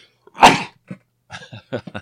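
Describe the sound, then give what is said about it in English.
A single sharp, loud sneeze bursts out, followed by a few brief breathy sniffs and small vocal noises. “I'm going to sneeze, I think.”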